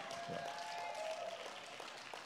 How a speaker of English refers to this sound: So can we give the Lord one more shout for that good news and hand clap?